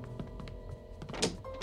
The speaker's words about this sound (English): Petrified by his wife's death, Jay doesn't even notice the door to his trailer closing.